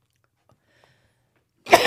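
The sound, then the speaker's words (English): After near silence, a person lets out a single sharp, harsh cough right at the end, loud on the microphone. “I'm the only one coughing up a lung.”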